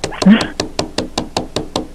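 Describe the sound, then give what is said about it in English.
Rapid, evenly spaced sharp clicks of a person's hard fingernails slamming against a hard table during a radio broadcast, about ten taps in quick succession, crisp, with a brief burst of background noise early on. “That was me slamming them on the table.”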